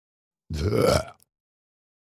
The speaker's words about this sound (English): No, this is bad. No burps. Cut that out, editor.